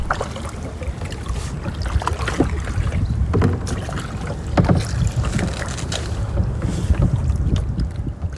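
Kayak paddles dip and pull through river water in a steady rhythm, with splashes and drips and a light rush of wind across the microphone.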